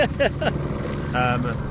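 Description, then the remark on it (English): A helicopter flies overhead as a steady low mechanical rumble that runs under people talking, holding fairly constant throughout with no clear rotor beat standing out. “Look, a helicopter interrupting my sales pitch.”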